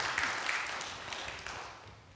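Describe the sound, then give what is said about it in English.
A crowd at a morning church service at St. Andrew's claps for a baptism, a dense, steady patter of many hands, holding fairly even before gradually tapering off over a couple of seconds. No one speaks. “Round of applause for the baptism then, everybody.”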